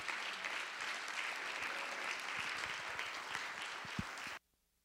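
A crowd applauds steadily, a dense wash of clapping that holds at an even level for about four seconds and then cuts off abruptly into near silence.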